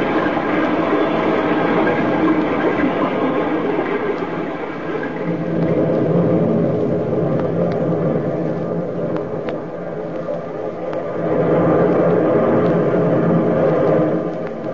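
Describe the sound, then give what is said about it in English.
A distant, steady, deep rumble of the sea rolls on without pause, swelling and easing gently in loudness, with no voices over it. “Far away you can hear the rumble of the sea.”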